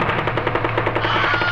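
Rapid automatic gunfire from an aerial dogfight between dueling daredevil pilots who forgot to use blanks, a steady stream of sharp bursts fired in quick rhythm over a low, continuous engine drone, loud and without any talking.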